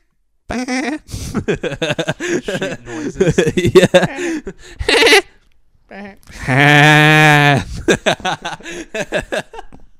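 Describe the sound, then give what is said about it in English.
A man's voice imitates a sheep with one long, loud, wavering bleat around the middle, surrounded by quick talking and laughter-like chatter. “Sheep noises.”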